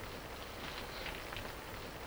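Rain comes down outside in a steady, soft hiss with faint patter running through it, an even wash of noise with no voices.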